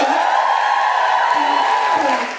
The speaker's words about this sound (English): And yourselves, give it up for yourselves. This is amazing. I know it's very American to ask you to do all that applauding, right?